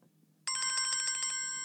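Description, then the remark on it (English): A bell used as the Lime Tree team's quiz buzzer bursts in suddenly and rings in a rapid, bright metallic trill, about a dozen quick strikes, then fades slightly while still ringing. No one speaks. “So the Lime Tree buzzer this week is the bell.”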